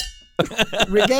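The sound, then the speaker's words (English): A Yeti metal tumbler gets accidentally knocked, giving a bright ringing clink whose high tone hangs and fades for a moment before someone starts talking over the tail of it. “Wow, sorry about that. Hit my Yeti.”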